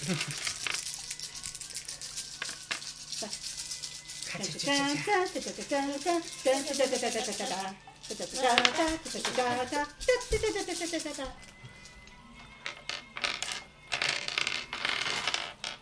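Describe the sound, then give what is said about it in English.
Dense, continuous clattering and rattling of simulated dice shaking and tumbling, played from phone dice, steady, with voices talking over the middle stretch. “Wait, we'll throw some simulated dice shaking.”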